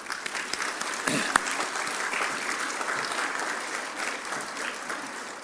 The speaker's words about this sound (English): But we do want to give these folks some applause.